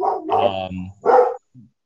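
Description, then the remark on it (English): A dog barks, two loud drawn-out barks in quick succession, then a faint short yelp trailing after. No one speaks. “I was very interested in your barking dog.”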